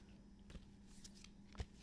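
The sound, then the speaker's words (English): Crisp riffle of a deck of cards being shuffled, a quick fluttering patter of card edges with a couple of sharper taps, quiet and without talk. “I like the ASMR of the sound of the shuffling.”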